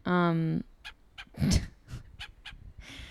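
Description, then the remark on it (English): A seagull on the roof of an apartment building lets out one loud, harsh, drawn-out cry, then falls quiet while a few sharp taps and scuffs sound around it. “I'm sitting on top of the roof of my new apartment building next to a seagull and an old table that was left up here long ago.”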